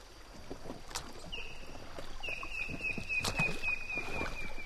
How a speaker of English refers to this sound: It's better when we're out paddling on the water. The river is fast-flowing and muddy, but gentle for now. Altogether, there are 12 of us traveling in 3 inflatable rafts and 3 kayaks.